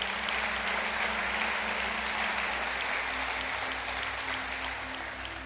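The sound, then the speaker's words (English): A crowd applauds steadily for everyone who raised their hands after a prayer, many hands clapping in a dense, continuous wash that holds level for several seconds before easing slightly, with a low steady hum underneath. “Now, I want everybody, let's give a hand clap to everybody that raised their hands.”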